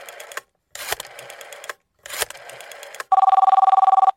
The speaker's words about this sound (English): So our talk about hot peppers actually set off a fire alarm where you're at.